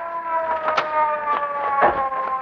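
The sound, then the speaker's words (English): A police car's siren holds a steady, loud wailing tone as the car approaches and pulls up to stop, with bursts of engine and road noise rising underneath. No one speaks. “here comes a police car. Yeah, we'll flag it down.”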